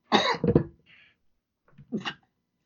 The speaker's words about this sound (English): I try to mute my mic whenever I to cough.